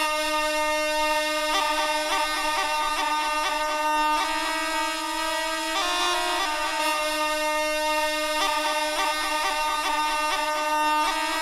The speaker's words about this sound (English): One time for the foghorn.